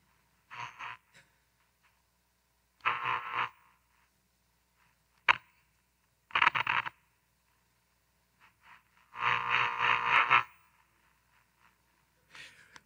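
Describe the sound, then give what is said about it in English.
Crackling radio static comes and goes in several hissy bursts separated by near-silence, with a sharp click midway, like a dial being turned in search of a station. The radio is picking up interference from the walls of a building, though it still plays a station. “Because of all the interference in these walls, it does play a station.”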